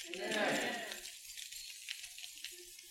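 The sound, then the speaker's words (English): A burst of metallic jingling as a bunch of keys on a keyring is shaken for about a second during a sermon, then fading into quiet with faint scattered clicks. “But while I'm preaching tonight, if God starts speaking to you about the keys of your life, don't be afraid to use your keys.”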